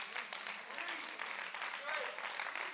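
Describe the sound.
An audience claps together in a dense, steady patter of applause that stays fairly even throughout, with faint voices mixed underneath.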